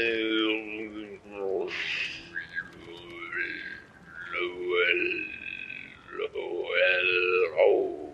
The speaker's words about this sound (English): It's a whale.